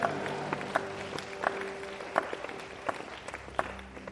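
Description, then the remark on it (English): An audience claps their hands, a scattered patter of many overlapping claps with sharper accents poking through, lasting several seconds at a moderate level without clear speech. “If you agree with me, clap your hands together and say a big amen.”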